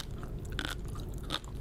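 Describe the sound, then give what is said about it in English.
Two crisp, crunchy bites in an eating video, a longer crackle followed by a shorter one, over a steady low background hum with no talking. “Is this really crunchy?”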